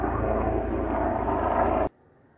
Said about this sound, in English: So I apologise, there seems to be a helicopter going overhead.